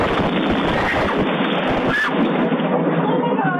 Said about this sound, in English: Now, heart-stopping video as a woman leaves her home and a bolt of lightning strikes just feet away.